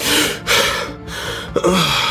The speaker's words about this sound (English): With a jolt, Amir's eyes flew open, his breath coming in ragged gasps.